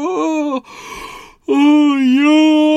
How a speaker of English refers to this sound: Oh, yawn. I hope I'm not making you yawn.